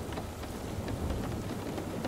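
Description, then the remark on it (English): Steady rain patters onto outdoor surfaces in a dense, even hiss, with scattered sharper drips standing out. A low rumble sits underneath, and no one speaks. “Each surface outside creates a slightly different sound as the white noise of the rain clears the air.”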